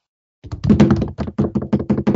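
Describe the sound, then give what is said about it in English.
A drum roll tapped by hand: a rapid series of knocking taps on a hard surface, about a dozen quick hits in an uneven rolling rhythm, fairly loud and dull-toned, with no voices over it. “So I guess we're going for our very final ranking. Drum roll.”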